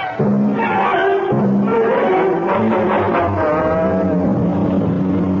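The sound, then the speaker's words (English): The loud, continuous engine of Dr. Thurman's sports car roars, its pitch climbing and shifting as it accelerates hard to high speed. “It's a sports car. It can do 100 if you open it up.”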